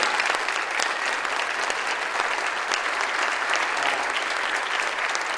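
An audience bursts into a steady round of applause, dense overlapping claps sustained at an even, fairly loud level for several seconds with no voices standing out.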